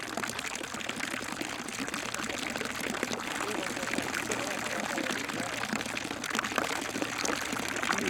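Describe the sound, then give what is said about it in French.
Water flows steadily and continuously, like a river or lakeside stream, with a dense bubbling, splashing texture that stays at an even, moderate loudness throughout. “J'enregistrais le bruit de l'eau et c'est tellement joli après pour écouter, relaxant.”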